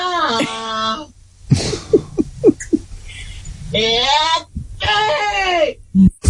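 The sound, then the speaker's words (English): A woman asleep on a bed screams during a nightmare or dream, letting out wavering, strained screams in three long bursts, with short choked gasps and whimpers between them. The cries are loud, high-pitched and quivering, almost bleating. “Did you know you screamed in your sleep like that?”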